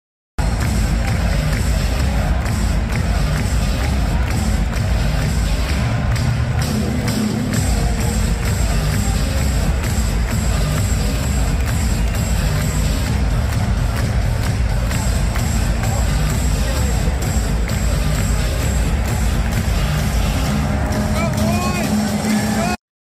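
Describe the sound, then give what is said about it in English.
A large crowd at an ASU game with record-breaking attendance roars continuously, a dense wall of cheering and chanting voices that stays loud and steady throughout, with no single speaker standing out. “I knew that the crowd was great, but it wasn't until I saw this video from our guy Res Devil that showed me just how electric the atmosphere”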